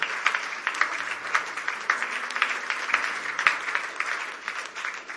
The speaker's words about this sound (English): Clapping is free without an offering.